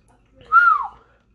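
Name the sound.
human whistle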